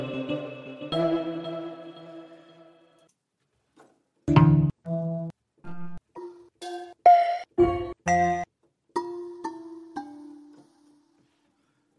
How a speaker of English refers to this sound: So I'm going to create another software instrument track. And I'm going to see what bells we have. So I'm going to go to bells. Oh man, we got a lot. Let's try them out.